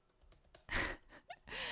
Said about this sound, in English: Click clack of typing. I'm typing furiously.